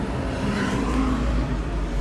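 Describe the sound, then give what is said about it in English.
Steady traffic rumble from cars moving along Cahuenga in Hollywood, heard from a parked car, a continuous low engine drone with tire hiss that swells slightly as a vehicle goes by, moderately loud with no talking. “By the way, the sounds that you're hearing are cars.”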